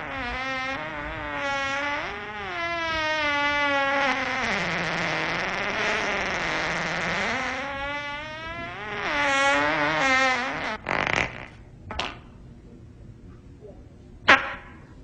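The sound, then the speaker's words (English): A long, loud fart buzzes for about ten seconds, its pitch wobbling up and down, then trails off into a few short sharp pops and clicks. “Okay, I'll be honest with you. I did fart.”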